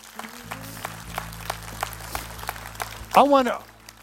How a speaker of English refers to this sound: Let's give Jesus one more hand clap.